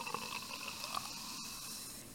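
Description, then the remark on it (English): Fizzing of a carbonated drink, a soft, steady hiss of tiny bubbles with faint crackles and pops throughout, quiet and continuous with no voices. “Yeah, do it right there on the mic so they can hear it, the little bubbles.”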